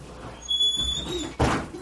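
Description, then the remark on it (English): A door swings closed with a solid thud after a brief faint squeak and some shuffling, followed by a short muffled rumble as it settles. “Here, shut the door.”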